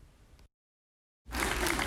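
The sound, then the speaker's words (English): A burst of audience applause at the close of a student film festival swells in loud and dense after a moment of silence, preceded by a brief, quieter wash of noise; no one speaks. “While the film fest came to a close and the applause quieted down”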